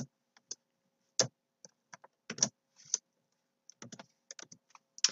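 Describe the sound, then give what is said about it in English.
Typing HTML code on a computer keyboard: quick, irregular bursts of key clicks with short pauses between, fairly quiet, with no talking. “All right, so we are done typing in our scaling down.”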